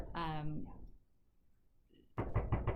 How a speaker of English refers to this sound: Yeah, maybe we should answer this one. That was a hard knock. Yeah. That person will not be deterred.